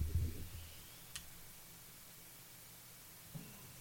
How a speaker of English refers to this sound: Is the hiss just there when we stop talking? It's constant.